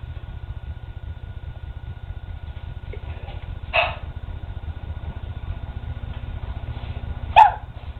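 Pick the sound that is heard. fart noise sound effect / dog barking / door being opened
dog barking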